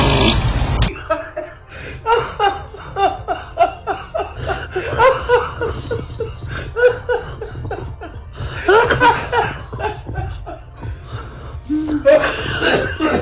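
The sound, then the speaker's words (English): A man outside the front door of his girlfriend's house lets rip a long run of loud, sputtering farts, rumbling and squeaking in bursts with short pauses, followed by what sounds like chuckling, recorded by a Ring doorbell camera. “Like, for instance, do you sneak out the front door of your girlfriend's house to fart, but then you forget that she has a Ring doorbell camera?”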